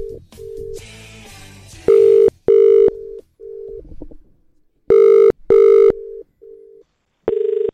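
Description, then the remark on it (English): An outgoing phone call being placed to a radio contest winner: steady dial-tone beeps and short keypad tones, then repeated clear ringing tones, with no one talking. “And well, DJ Joey, call our winner.”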